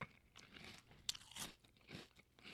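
Close, crisp crunching of dry breakfast cereal being chewed, a series of sharp bursts at an uneven rhythm with softer mouth sounds between, no talking.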